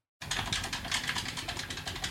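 Rapid, frantic button mashing in a 'typewriter' technique while playing Mortal Kombat: a dense, fast clatter of plastic clicks, steady, running almost continuously after a brief moment of silence, with no talking.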